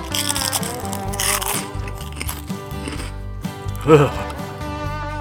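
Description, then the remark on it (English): Two loud, crisp crunches of someone biting into fried chicken, one early and one near the end, set against steady background music. “KFB's extra crunchy fried chicken clits.”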